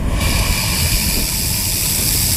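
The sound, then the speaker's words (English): A bull snake, a constrictor, hisses loudly and steadily as it pulls back ready to strike, a harsh, breathy rasp that sounds like a rattle and holds without a break, with no one talking. “Listen to the bull snake, guys.”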